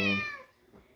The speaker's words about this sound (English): I got one of our kitties right here.